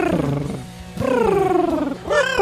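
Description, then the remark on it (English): A person imitates an angry cat: loud, drawn-out growling yowls that rise and fall in pitch, three snarling pushes back to back with no other talk. “Oh, no, that's my impression of a cat.”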